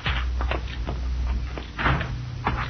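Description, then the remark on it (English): A back door is opened and shut, with a series of wooden knocks and latch rattles over a low steady hum, ending in a firmer closing thud. “Let's use the back door, Cisco.”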